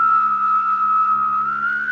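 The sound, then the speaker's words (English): A person hums and whistles at the same time, a steady high whistle over a low buzzing hum, imitating an alien spacecraft. The sustained eerie tone holds fairly loud for two seconds. “Yeah, and the techniques that the aliens told me is you hum like oh, and whistle. Then you do it at the same time.”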